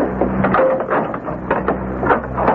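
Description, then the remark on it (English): A metal cell door grinds and rattles shut, its steady mechanical clatter broken by several sharp clanks as the lock catches. No one speaks. “Now close and lock the door.”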